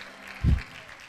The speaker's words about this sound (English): Come on, clap your hands if you hear me.